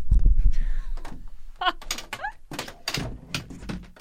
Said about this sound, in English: He stood up. He fell right back down.